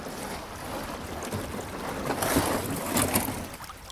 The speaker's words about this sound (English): We put in our canoes at the village of Aboyne, where the river opens out into a calm pool beneath the bridge.